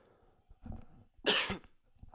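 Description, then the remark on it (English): A single loud cough bursts out harshly, preceded by a softer throaty huff, with no talking around it. “Excuse me, I had a cough there.”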